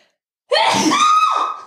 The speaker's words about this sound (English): Bless me. Bless you. Thank you.